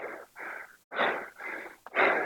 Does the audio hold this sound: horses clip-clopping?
no